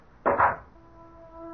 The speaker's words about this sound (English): The door thudded shut like a cell door behind me.